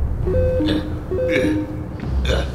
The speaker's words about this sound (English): At this moment, though, your comlink starts to beep.